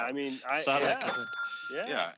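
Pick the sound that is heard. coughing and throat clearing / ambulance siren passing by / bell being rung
bell being rung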